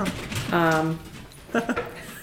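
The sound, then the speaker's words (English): A dog barks twice, a longer drawn-out bark followed by a shorter one a moment later, moderately loud. “Dog overhead.”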